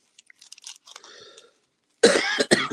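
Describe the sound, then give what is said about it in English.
Soft crackling rustles give way to two harsh, loud coughs from a person with a cold, the second following quickly after the first, with no talking. “Got a little bit of a cough today.”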